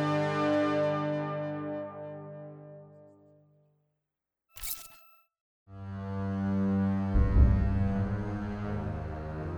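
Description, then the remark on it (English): Sustained pipe organ chords of Bach's Toccata and Fugue in D minor, rich and droning, fade to silence; a short harsh burst of noise cuts in, then loud, full organ chords swell back and hold. “For sheer triumphant power and glory, there's nothing in the whole of music to match the toccata and fugue in D.”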